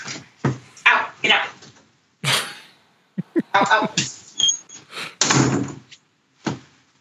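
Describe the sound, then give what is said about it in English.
A door is opened with a series of knocks, rattles and thudding bumps as dogs are put out, ending in a louder bang as it swings and shuts, followed by a few scattered clunks. “excuse me, I got to kick my dogs out real quick.”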